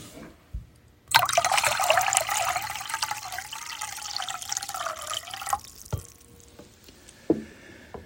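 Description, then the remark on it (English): Water is poured steadily into a basin for about four seconds, to wash feet, a splashing stream with a shifting hollow tone, followed by a few scattered drips and small splashes. “he poured water into a basin”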